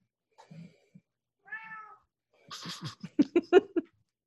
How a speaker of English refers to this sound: Sorry, Lock. Oh, I hear kitties. Hi, Lock.